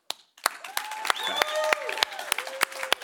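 A small crowd claps in scattered, uneven bursts while voices whoop and cheer over it, one rising high-pitched cheer standing out above the rest. The audience is cheering to vote for a contestant in a contest, reaching a maximum of 103 decibels.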